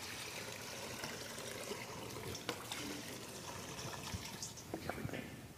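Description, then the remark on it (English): Water pours and splashes steadily into a baptismal font during a baptism, a continuous trickling rush with a few brighter splashes near the end, fairly quiet. “Would you like to help me pour the water”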